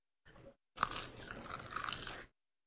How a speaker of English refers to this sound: Look at us just snacking away in front of these folks. You didn't realize you guys were coming to watch us do ASMR eating, did you?